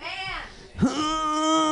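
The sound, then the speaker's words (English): A person imitates a wolf howl with their voice as an animal noise for others to guess, a single drawn-out call that swoops upward and then holds a steady, sustained tone, fairly loud. “It's a wolf. It's a wolf.”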